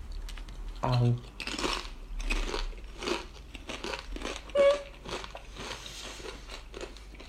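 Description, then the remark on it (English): Loud, irregular crunching as two flavours of crisps, prawn cocktail and salt and vinegar Discos, are bitten and chewed together, a rapid run of sharp dry crackles and munches lasting several seconds, with a low hum and faint murmuring underneath. “I'm going to have one of each at the same time.”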